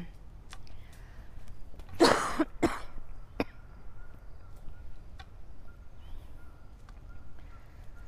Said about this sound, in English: There's the geese, Canadian geese.